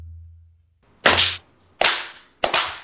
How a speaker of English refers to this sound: Oh, I forgot to do three. Sorry. I just clapped once. We can do it again.